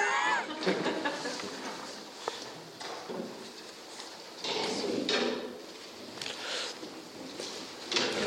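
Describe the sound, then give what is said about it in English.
More chairs being fetched and set out for late arrivals: a busy stretch of reverberant scraping, clunks and knocks, with footsteps and indistinct murmuring voices in the background. “we need some more chairs. We've got the late arrivals come for... Williams, would you be on for chairs?”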